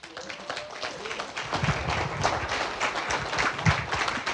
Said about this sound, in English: You don't even know who you're clapping for.